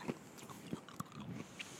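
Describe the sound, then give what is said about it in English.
A man chewing a sour candy, with a few sharp crunchy bites spaced irregularly amid soft wet mouth sounds, quiet and with no talking. “He's chewing.”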